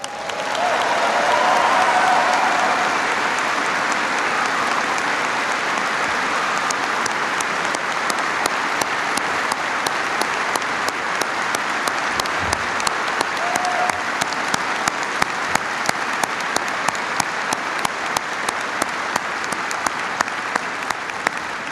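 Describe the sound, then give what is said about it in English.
Sustained applause from a large audience for military families, marking the end of the war, fills the whole stretch: a dense wash of clapping that stays loud and steady, with sharper individual claps standing out in the later half. “So today, as we mark the end of the war, let us acknowledge, let us give a heartfelt round of applause for every military family that has carried that load over the last 9 years.”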